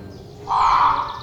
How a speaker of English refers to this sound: A rasping caw came from the crow's beak. It sounded hungry, almost desperate.